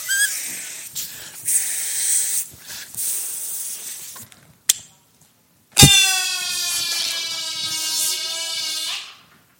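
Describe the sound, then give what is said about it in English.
Airy hissing and rustling give way to a brief pause, then a sharp pop-like onset and a loud, reedy, buzzing squeal as a rocket balloon blown up through a straw deflates and flies, whining steadily for about three seconds. “And here's what a rocket balloon looks like.”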